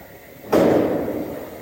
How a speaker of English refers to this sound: I heard somebody knocking on the door.